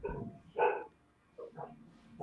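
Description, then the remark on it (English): A small terrier barks a few times in short, sharp bursts, with a louder yap in the middle and softer yips trailing after. “That's my terrier, by the way.”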